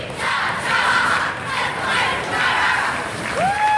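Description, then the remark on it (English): Kids of the Tuscola Warriors basketball team shout a team cheer in unison, recorded at 4:30 in the morning, loud rhythmic bursts of voices that swell and dip, ending with a sharp rising high-pitched yell. “I had to get there at 4:30 this morning and record your kids.”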